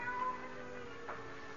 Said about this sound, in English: Suddenly, silence was broken by the faint crying of a cat.